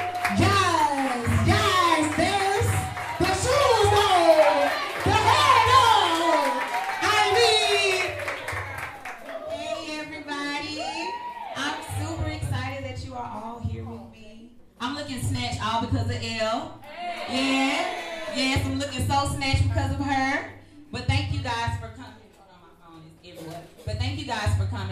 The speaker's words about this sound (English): So can we just put a big round of applause for our girl